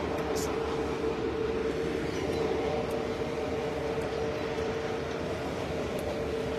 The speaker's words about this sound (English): I don't know if you can see behind me the big trucks.